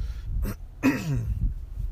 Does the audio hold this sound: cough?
yes